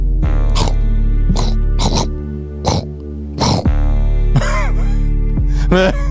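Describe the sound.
A voice imitates a walking beast breathing out fire and sparks from its mouth with about eight harsh, raspy bursts of breath in a loose rhythm, loud, over a steady low hum.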